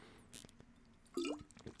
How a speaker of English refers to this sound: Oh, that's water, baby.